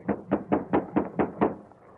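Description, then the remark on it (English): Seven quick, evenly spaced knocks rap on the wooden door of a house, moderately loud, with a steady rhythm and no voices. “Going to bust right in or rap on the door? Rap.”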